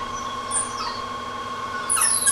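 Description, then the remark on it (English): An electric motor, started by pressing a green button, whirring steadily as it drives a line shaft running end to end of a workshop and powering the drop stamps attached to it, a constant tonal hum overlaid with high-pitched whines that sweep up and down in pitch, with no voices present. “There goes the whir.”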